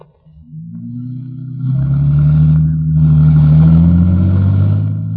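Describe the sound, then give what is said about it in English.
A car engine rumbles to life and revs up, its low droning growl swelling louder as the car pulls away and keeps driving straight out a road, with no voices. “Come on, let's go in your car.”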